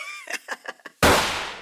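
A few short, rhythmic vocal-sounding bursts give way to a single sudden, loud gunshot whose harsh crack fades out in a long, rough decaying tail.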